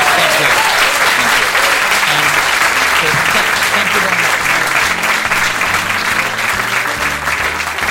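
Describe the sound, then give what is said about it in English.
Sustained audience applause for guest Craig Hill on My Seven Wonders with Clive Anderson, a dense steady wash of many hands clapping at even loudness for the full eight seconds, with a faint low murmur beneath. “But anyway, so I wonder if we can give Craig Hill a big round of applause for joining us.”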